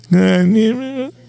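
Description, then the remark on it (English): A single loud fart, a buzzy tonal blast lasting about a second that wavers and rises in pitch just before it cuts off, with no talking around it. “Free farts for everybody.”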